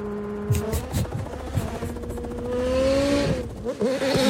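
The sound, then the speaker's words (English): A car engine revs hard and steadily climbs in pitch as it drives on dirt, with rough thumps and rattles from the wheels over uneven ground and its soft, long-travel suspension, fairly loud throughout. “It's like to see it on a rally car, that soft of suspension.”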